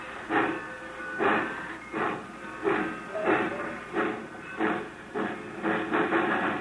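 A steam locomotive puffs and hisses in steady, rhythmic bursts, roughly nine broad chuffs of steam over a constant hissing background, moderately loud with no voices.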